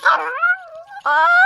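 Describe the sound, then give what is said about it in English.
A dog named Diana, about to pounce on a rat on the stairs, lets out two loud yips: the first slides down into a drawn-out whine, then a brief pause before a second sharp, sustained yelp. “I was merely trying to stop your dog.”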